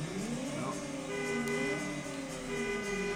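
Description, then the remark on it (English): A video game car horn, sounded with the controller's right bumper, blares in one long, steady honk, holding a bright buzzy tone for the full few seconds, fairly loud, with faint engine rumble underneath and no talking. “That's the horn. The horn is the right bumper.”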